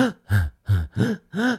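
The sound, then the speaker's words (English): A person demonstrates a breathing rhythm for running: five quick, forceful, partly voiced breaths in a steady pattern, fairly loud, with no talking. “You've just got to, well, it's all about the breathing I found with the running.”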